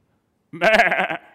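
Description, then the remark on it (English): A person imitates a sheep's bleat, a single wavering "baa" lasting under a second, loud, with a quavering, vibrato-like texture before trailing off. “Fat, contented, flourishing sheep. I like that.”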